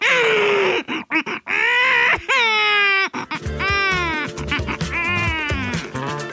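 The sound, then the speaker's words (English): A baby, just waking up, wails in loud, high, strained cries that rise and waver, broken by short gasping pauses, with a steady low throbbing underneath in the second half. “They're just waking up.”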